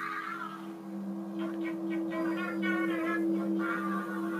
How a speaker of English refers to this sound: Yeah, he's humming some sort of weird song.